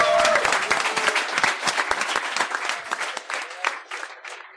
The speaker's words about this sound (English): Give our panelists a big round of applause. Thank you very much, guys.